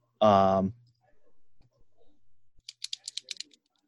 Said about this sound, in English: A pen clicking.